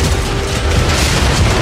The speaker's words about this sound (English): Time seems to stand still as she sees her father helping someone exit the building at the same moment the car slams into Jay and the building collapses around them.